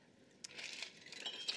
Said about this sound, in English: All right, and the last thing all we're going to need is a little bit of ice. So I already got us some ice in a glass over here, and you just got to guide a little bit into your glass because you need proper dilution, so fill it up.